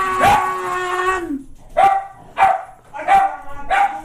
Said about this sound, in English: Are you barking at no one? Yes, yeah. He is.